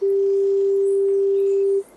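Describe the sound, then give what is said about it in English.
A pure, steady sine-wave tone holds one unwavering pitch at a constant loud level for nearly two seconds, then cuts off abruptly, with faint high chirps flickering in the background. “If I step out on my porch and I hear a dove going off, I know that dove is making a sound that's, in nature, it's pretty much the closest thing to a sine wave.”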